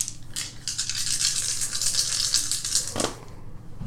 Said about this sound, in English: Okay, so I roll 5 dice? Yeah, yes. 5 dice, and if a 4 greater, is a success.